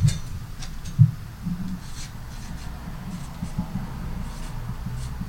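A pen scratches and scribbles across a piece of paper as someone writes down the name of an animal. It is a steady run of soft strokes with a few sharper taps, continuing for several seconds.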